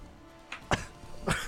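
Two short, husky coughs, the first around the middle and a second one moments later, fairly soft, with no talking in between.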